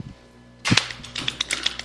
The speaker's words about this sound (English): Why are you clapping so hard? Just chill.